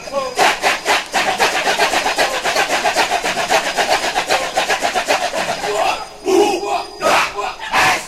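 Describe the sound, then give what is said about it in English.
A large chorus of voices chants one clipped syllable over and over in a fast, loud, interlocking rhythm, imitating the monkey hordes of the Ramayana epic, with a few sharper shouted accents near the end; a 1969 recording by David Lewiston released by Nonesuch Records. “And the chorus that you're hearing is imitating monkeys as they chant the syllable over and over.”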